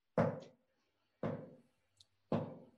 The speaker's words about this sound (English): There is a gentle rapping on the door to the pit. A subtle tapping that gets louder.